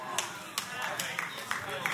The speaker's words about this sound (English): For the four of y'all who are clapping, I'm gonna keep preaching.